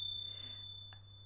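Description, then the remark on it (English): A single bright ding from a small bell, its high, clear tone ringing on and slowly fading over a steady low hum, with a faint tap just before it dies away. “I dinged it out of my head.”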